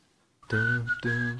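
A short snippet of a pop tune: a bright whistled melody over a rich harmonic backing, two sustained phrases with a brief dip between them, fairly loud and close.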